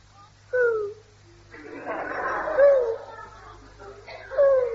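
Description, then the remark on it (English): A person hidden in the bushes behind a garden privet hedge imitates a bird call three times with short, sliding whistle-like notes, spaced a couple of seconds apart, with a soft rustling hiss in between and a low steady hum underneath. “Hey, perhaps it's a bird.”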